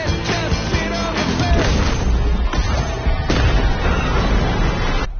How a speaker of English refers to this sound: And that was a semi-truck just running into a train and then it exploding.